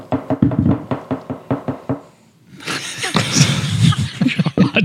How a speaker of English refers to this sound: You know, I used to catch shit for crunching crackers, and here you are knocking your glass on the goddamn table.